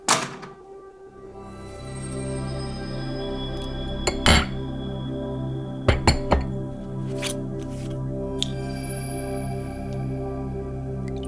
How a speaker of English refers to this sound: I'll pour us a drink.